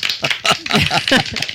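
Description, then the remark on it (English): Several sharp hand claps land in an uneven rhythm, mixed in with people talking over them. “You're clapping so much.”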